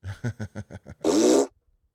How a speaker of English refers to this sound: That's like, we don't burp on the microphone as much. I literally just burped on the microphone. I know, but as much.